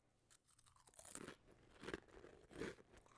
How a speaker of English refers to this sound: Listen to that crunch. Isn't that amazing? Okay. Yeah, see, you get the effervescence of the Sun Chip.